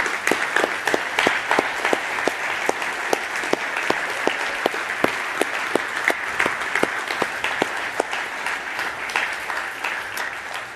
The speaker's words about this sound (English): But I want to just right now, let's just applaud all the moms.